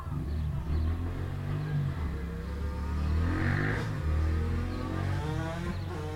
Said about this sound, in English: Man, those motorbikes are so loud.